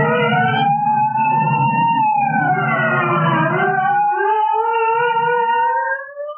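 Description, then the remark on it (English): Several police sirens of arriving state troopers wail at once, their rising and falling tones overlapping loudly over a low engine rumble, holding steady for a few seconds before the sound cuts off. “Say, look. Here come the state troopers.”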